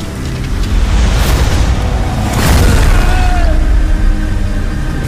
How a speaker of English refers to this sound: At the weight of the exosuit, I jumped onto the Kryptonian, and we crashed into the building, hitting the concrete far below.